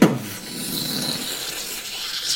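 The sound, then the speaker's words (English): A sharp onset gives way to a steady, dry rasp of a wood etching being scraped into a wall, a hissy grinding texture that holds at even loudness for about two seconds with no voices. “Magically creating a beautiful painting. No, an etching, a wood etching coming from the wall itself of this fanciful gala as a master maker Canadius crafts art in this place.”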